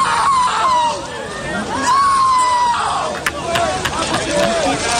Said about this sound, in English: Listen to this man scream.